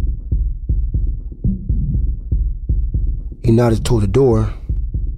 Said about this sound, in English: I mean, I think I played it cool, but my heart was beating fast as hell.